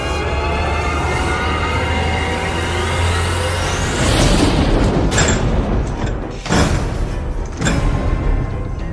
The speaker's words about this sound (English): thumping noises against my front door. Did you hear that? There's a turkey banging on my front door.